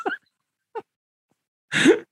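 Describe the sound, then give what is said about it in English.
A voice imitates heavy, raspy breathing: two short voiced puffs, a pause, then a longer, louder wheezing gasp, without any other talk. “Heavy breathing.”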